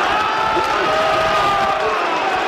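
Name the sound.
stadium crowd cheering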